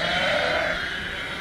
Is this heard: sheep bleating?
yes